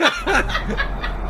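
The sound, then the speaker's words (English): A person imitates a crowd of about 33 seagulls jamming into one small opening, a quick burst of high, warbling cries for about a second, loud, sounding close to snickering laughter. “This is 33 seagulls slamming into one small opening.”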